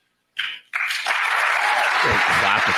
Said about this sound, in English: Clapping at that.